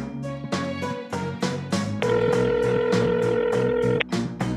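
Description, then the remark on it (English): A phone call being placed: a steady two-second ringing tone sounds over a rhythmic backing track with regular beats, fairly loud and without any voices. “I can call him if you want.”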